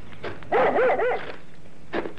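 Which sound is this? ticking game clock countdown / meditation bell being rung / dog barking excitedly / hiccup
dog barking excitedly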